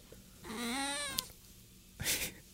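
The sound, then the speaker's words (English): A single drawn-out cat meow, rising then falling in pitch, followed by a short breathy rustle or huff, fairly clear, with no talking. “It's the other cat.”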